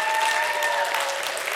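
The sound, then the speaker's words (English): A crowd of people at the Pendleton Adventist Church applauding together to affirm a new church member, a steady, dense patter of many hands clapping at once, sustained and fairly loud throughout with no voices on top. “Let's just give him an affirmation by applause if you want him here.”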